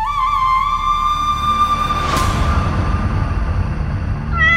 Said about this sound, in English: With a meow. With a meow bumper.